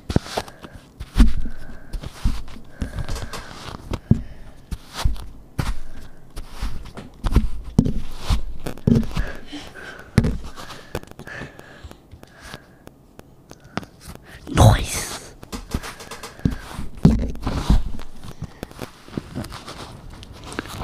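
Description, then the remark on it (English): Kinetic sand being squished and crumbled for ASMR: irregular soft crunches, pats and gritty crackles, moderately loud, with a louder burst partway through and a single brief spoken word. “Kinetic sands is what we were just experiencing.”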